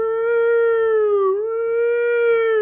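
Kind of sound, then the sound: vocal imitation, voice imitating a siren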